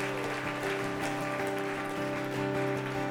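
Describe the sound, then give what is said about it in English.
A church audience claps steadily, a dense patter of many hands that holds at an even level throughout, with sustained low musical tones humming underneath. “Church, let's give them a hand clap.”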